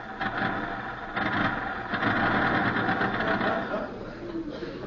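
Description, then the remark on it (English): A ramshackle car's engine rattles and chugs steadily, loud and mechanical, then eases off slightly toward the end as the car comes to a stop out front. “Was that a car stopping out front?”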